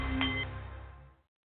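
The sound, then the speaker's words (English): A Nepalese meditation bowl gives one chime, a steady metallic ring with layered overtones that holds briefly and then fades out within about a second. No one speaks. “The Nepalese meditation bowl is chiming, centering your mind and delight on the art of the CEO.”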